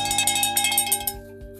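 A bell-like notification chime rings out with sustained, overlapping metallic tones over a few soft, rhythmic low pulses, then the bright shimmer fades while the steady ringing lingers. No one speaks.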